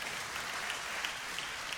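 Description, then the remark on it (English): A crowd claps steadily, a dense, even patter of many hands with a few sharper individual claps popping out, sustained at a moderate level with no voices over it. “Honesty gets a clap, that's good.”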